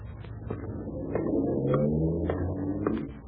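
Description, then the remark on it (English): A car engine rumbles and revs as the vehicle pulls away to be taken around back to the garage, its pitch rising steadily with acceleration. Nobody speaks, and the sound eases off only slightly at the end. “Take the car around back to the garage, Dave.”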